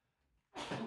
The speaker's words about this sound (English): All right, I just sneezed. Hopefully that was off microphone enough.